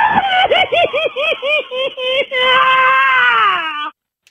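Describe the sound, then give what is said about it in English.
A man's voice imitates the shocked scream of getting into a cold shower: a burst of quick, choppy yelping gasps, then one long, loud, strained wail that slides downward before cutting off abruptly. “Joker scream.”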